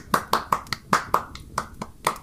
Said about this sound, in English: The clerk in the tank involuntarily applauded.